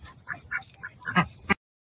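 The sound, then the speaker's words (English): Several backyard ducks, kept with chickens and roaming all over the yard, quack in short, nasal bursts over about a second and a half, moderately loud, with a louder cluster near the end before it cuts off. “And obviously the chickens and ducks have now gotten a lot braver in their explorations.”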